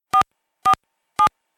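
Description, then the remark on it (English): Three short phone keypad tones sound in an even rhythm, about half a second apart, each a crisp two-pitch beep heard clearly with silence between them: dialing into a museum exhibit's audio guide on a phone. “This is the audio guide, which you access on your phone.”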